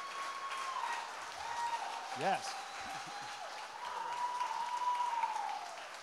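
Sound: audience applause and cheering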